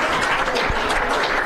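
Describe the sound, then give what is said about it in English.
A crowd of fans cheers and applauds steadily, a dense wash of clapping and whoops that stays loud and even throughout, with no clear talking on top. “I love this fan base cheering when the GPS works.”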